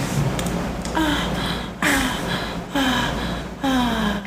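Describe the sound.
A person voices four breathy, exaggerated moans in a steady rhythm, each sliding downward in pitch, fairly loud with short gaps between them.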